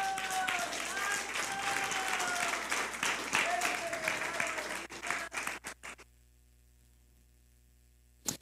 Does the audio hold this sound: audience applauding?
yes